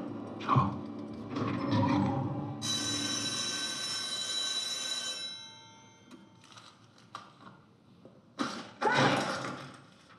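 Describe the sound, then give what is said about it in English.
A clock mechanism whirs and clanks, then a bright, sustained chiming tone rings out as the clock strikes midnight, fading after a few seconds into scattered clicks and short mechanical bursts. “Our daily failure was announced at the chimes at midnight, and the sound would haunt our unwelcome dreams.”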